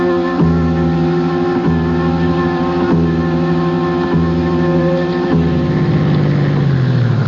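A car engine hums steadily and loudly, its pitch shifting a few times in regular steps, then dropping and winding down toward the end as the engine is turned off. No one speaks.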